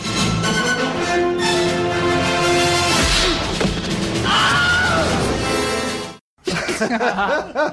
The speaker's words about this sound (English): also gave us the Wilhelm scream